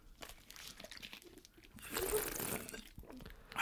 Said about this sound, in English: As the other guy fiercely drinks his water.